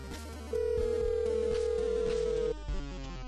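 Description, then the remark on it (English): A telephone rings once, a steady electronic tone held for about two seconds, clear over soft background music, with no talking; a call from a doctor at noon on a Sunday. “That was until I got a phone call at noon on Sunday.”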